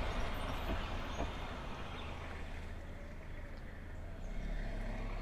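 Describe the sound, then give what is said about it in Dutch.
A steady low rumble of a car driving past, the engine and tyre noise filling the space evenly, swelling slightly toward the end, with no voices. “En er komt nu even een auto voorbij.”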